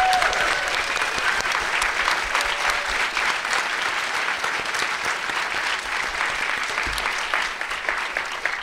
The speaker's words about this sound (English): Thank you to Substance and Sony Pictures Home Entertainment for the amazing spot prizes. You're applauding prizes now. It's good.